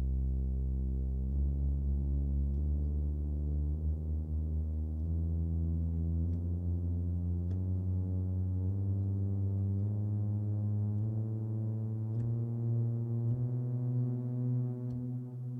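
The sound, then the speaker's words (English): Low, sustained keyboard tones played in a steady sequence of stepped pitch changes, moving by a whole step and then a half step, with no voices over the steady, buzzy sound. “Now, if you wanted to go a half step up, it would sound like this, and I'll put the full step first, half step, and we'll go from there.”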